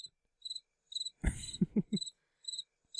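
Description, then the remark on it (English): Crickets chirp in short, evenly spaced bursts, a steady high-pitched trill with a brief louder rumbling burst cutting in around the middle before the chirping resumes. “Crickets.”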